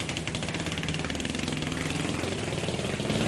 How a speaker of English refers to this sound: And then David Rush, he holds the world record for popping 200 balloons with a nail in 14.7 seconds. Ready, set, go!